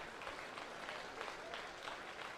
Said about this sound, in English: And it's strike two, so 2-2 to the Cougar third baseman. Watkins at second, Gamble at first, and one out. All tied up at one apiece. The crowd comes alive with two strikes on Deming.